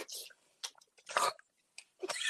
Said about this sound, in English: One thing I don't like about Jello shots, you can't always get all of it in one session. Oh yeah, you got to slurp that.